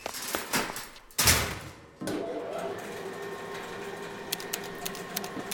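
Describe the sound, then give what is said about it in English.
A few quick knocks as someone bangs at lift buttons, then a harsh mechanical burst and a steady lift motor hum with grinding overtones, with faint clicks near the end, as the lift locks up stuck halfway between floors. “The lift will lock up if you go banging at the buttons.”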